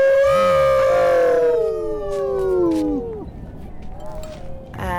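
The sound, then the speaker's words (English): A crowd of people howling together toward the setting sun, several loud voices holding long wavering wails that slide downward and trail off after a few seconds, leaving faint outdoor background noise. “So now the sun is setting, and everybody howls at the direction of the sun.”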